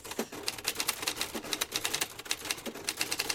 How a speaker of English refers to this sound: My old typewriter.